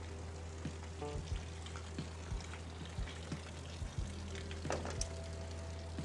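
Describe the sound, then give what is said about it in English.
Steady rain falls in a continuous soft hiss, with scattered light taps and a few sharper drips, including rain running from the gutters. There is no talking, and the patter stays even and moderately quiet throughout. “Can you guys hear that? That's rain.”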